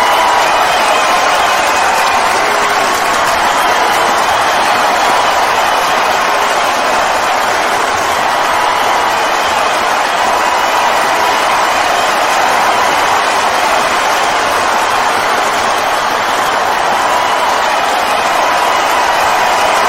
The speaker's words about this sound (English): Hear the crowd. Holy crap. Look at this crowd. It's massive. They're going nuts. They can't wait to hear him.